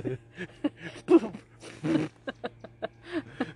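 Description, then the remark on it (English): A neighbor's dog barks repeatedly in the background, a string of sharp, irregular yaps with a few longer, louder barks mixed in, over a steady low electrical hum. “By the way, that's not our dog barking in no. the background. It's neighbors. It's a neighbor dog.”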